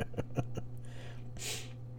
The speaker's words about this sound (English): Cough, cough.